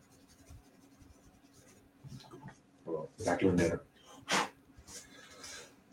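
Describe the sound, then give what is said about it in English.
Scratchy rubbing on paper as pencil marks are rubbed out, in a few short bursts with the loudest stretch in the middle, over a faint steady hum. “So let's rub all this out.”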